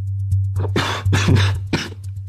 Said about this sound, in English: … said, interrupting his sentence with a mixture of chuckling and coughing